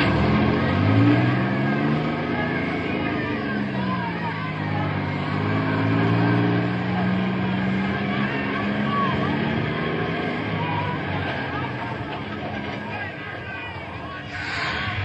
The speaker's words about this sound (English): This bus is filled. Stand here now until it pulls away and the other one pulls up the load.